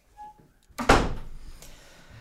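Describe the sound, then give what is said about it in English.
A door swings shut with a single solid, loud thud, its sound ringing out briefly and fading, with a faint creak beforehand. “We taught our kids to close the door behind them.”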